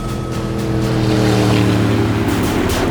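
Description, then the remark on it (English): A powerful high-speed patrol boat engine drones steadily and loudly, its low harmonic hum layered with rushing water and spray as the craft speeds west over the water. “Yeah, heading west in a high-speed patrol boat.”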